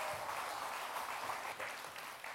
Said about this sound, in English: And as they come on up on the stage, would you warmly welcome them here this morning? Come on up. Oh, keep your applause going. Here they come. Here they come.